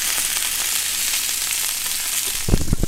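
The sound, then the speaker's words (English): Steady crackling sizzle of a roughly 14-ounce ribeye steak frying in a hot pan for lunch, a dense hiss that continues throughout, with a few louder clattering bursts near the end. “Just love the sizzle.”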